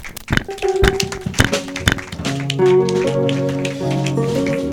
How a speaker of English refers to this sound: I can't feel your clapping. If you know that you're a living soul, if you know that you're in the presence of God, let me hear you. Let me hear you. Let me hear you begin to clap for Jesus. Begin to clap for Jesus.